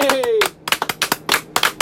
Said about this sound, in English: So, you know, one more round of applause.